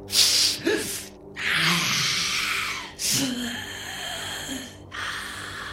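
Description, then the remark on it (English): A voice imitates a horned devil sniffing: a series of loud, breathy snorts and drawn-out hissing inhales, with low growling undertones and no spoken words. “The horned devil sniffs and gets closer.”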